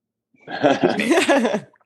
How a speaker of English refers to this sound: sorry, I have to burp.